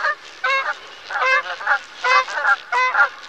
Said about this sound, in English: In the winter, these wetlands are a good place to spot dusky Canada geese. Listen carefully to their call.